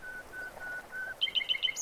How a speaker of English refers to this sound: Oh, birds! Bird songs, rather. Pipe them through speakers.